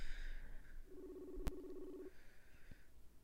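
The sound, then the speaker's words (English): A phone's outgoing ringback tone: one steady, low buzzing ring lasting about a second, fairly quiet and heard through a handset, with a sharp click partway through and faint hiss around it. “I feel like it's ringing behind my head. No answer.”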